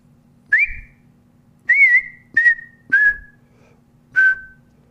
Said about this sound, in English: I'm your guy. Yeah. I'm ready to whistle, dude.